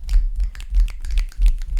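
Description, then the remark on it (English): A self-invented rhythmic snap clap made with the fingers, several sharp, crisp snaps alternating with duller thumping claps in a steady repeating pattern, moderately loud with no talking. “I do the snap clap.”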